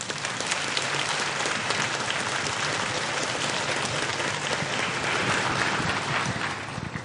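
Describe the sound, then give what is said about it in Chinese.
Sustained audience applause at a forum welcoming the Taiwanese veterinarian and animal-literature writer Du Bai, a dense, steady wash of many hands clapping at an even loudness with no voices breaking through. “我们掌声欢迎杜白杜医师。”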